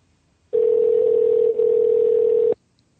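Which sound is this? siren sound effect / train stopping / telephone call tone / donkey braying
telephone call tone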